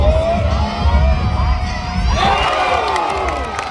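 A crowd at football practice cheers loudly and continuously as Romeo Doubs beats Jaire Alexander off the line, with overlapping shouts and whoops swelling near the middle; scattered clapping may be mixed into the steady roar.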